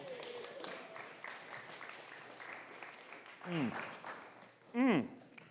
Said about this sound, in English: Oh, that's good. I'm sorry, I'm going to keep chewing into the microphone. You just ignore the smacking sounds. I think I took too big of a bite.